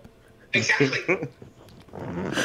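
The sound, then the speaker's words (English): A dog lets out a sudden loud, harsh bark-and-growl burst, then a rougher snarling, growling noise follows after a short pause. “The dogs out of nowhere.”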